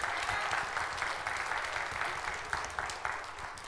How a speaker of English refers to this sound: Let's give Heather and Lipstick a round of applause.